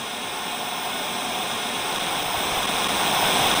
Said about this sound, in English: Then the sound of a roaring static fills your ears.